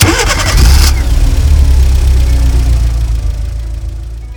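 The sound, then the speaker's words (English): A car engine cranks with a brief, bright starter whir, catches, and then settles into a steady, deep idle rumble that stays fairly loud, with no voices. “After the final handshakes were complete, she returned to the main entrance where her silvery blue car waited for her.”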